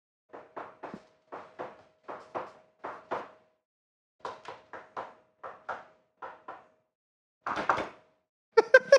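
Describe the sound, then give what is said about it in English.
A secret knock: a rhythmic pattern of sharp knocks rapped on a hard surface, played once and then repeated after a pause, followed by a brief scuffing noise and a few quick taps. No one speaks. “He teaches you a secret knock.”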